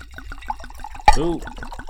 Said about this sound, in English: We're going to pour it up, get these libations going on, and we're going to talk that shit this year.